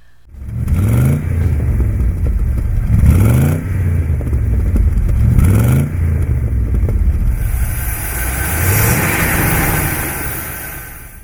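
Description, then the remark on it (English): A Facel Vega sports car engine revs up sharply about four times, each burst climbing in pitch before dropping back to a rumbling idle. It is loud, with no voices. “Jay Leno's car collection included a new red Facel Vega”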